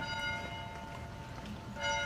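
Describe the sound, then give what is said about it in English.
Church bells ring across town in Fergus Falls, Minnesota, marking 100 years since the deadly 1919 tornado; their tones hang and overlap in a steady wash, with a fresh strike swelling near the end. No one speaks. “As the bells ring across town, people stop to remember what happened on June 22, 1919 at 4:45 p.m.”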